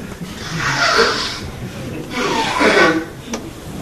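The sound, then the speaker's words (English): A sneeze comes through as two loud, breathy bursts of hissy noise, each lasting under a second, spaced about a second and a half apart, with no talking around them. “Don't forgive me, I sneeze again.”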